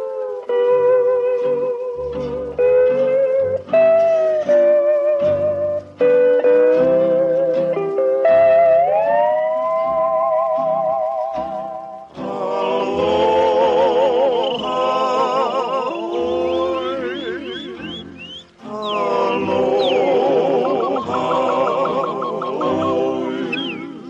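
A comic novelty big band number plays loudly: sustained, wobbly tones step up in pitch, then a dense, brassy swing section erupts with swooping, siren-like and meowing slides.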